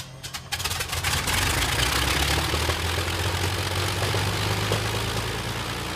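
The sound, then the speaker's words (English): A Rolls-Royce Merlin piston aircraft engine runs on an engine test, building within the first second into a loud, steady roar with a deep throbbing rumble underneath, continuous, with no voices. “The Rolls-Royce Merlin engines receive their engine tests.”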